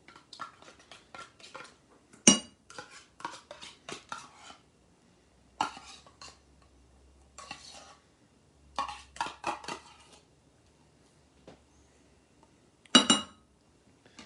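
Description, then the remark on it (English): Metal utensil scraping and clinking against a metal container as nacho cheese is emptied into a bowl for the microwave, in irregular bursts with sharp clanks and pauses, moderately loud, no talking. “All right, gonna get a bowl. Unfortunately, this is a metal container. You can't just directly put it into your microwave.”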